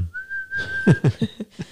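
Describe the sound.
A single steady whistled note, held for about a second at close range, fades out as someone begins talking over the tail of it.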